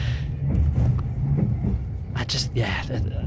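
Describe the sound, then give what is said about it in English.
A continuous low, heavy rumble of a train running on the rails, heard from onboard as it emerges from a tunnel, with a couple of brief hissing, rushing bursts near the end. “We're about to emerge out of yet another tunnel.”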